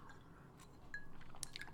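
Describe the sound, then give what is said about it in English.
Quiet sloshing and sipping of water, with a couple of faint, bright clinks of ice against a glass near the end. “Here's to new healthy lifestyle of water and ice.”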